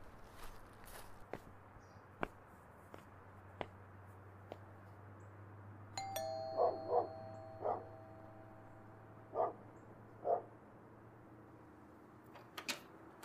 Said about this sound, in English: I walked up to the front door and rang the doorbell.